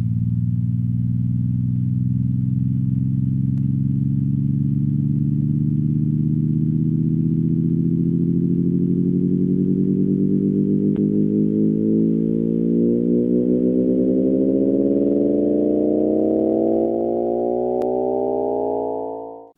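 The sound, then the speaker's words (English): Sonified gravitational waves from merging black holes: a loud, buzzing harmonic drone that glides steadily upward in pitch for about twenty seconds, then cuts off abruptly. No one speaks. “So that's what gravitational waves sound like.”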